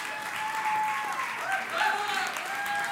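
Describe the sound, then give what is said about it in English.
A crowd at the C12 event applauds steadily with scattered cheers and whoops rising over the clapping, the dense noise holding loud and even throughout with brief high-pitched shouts poking through. “You should keep cheering.”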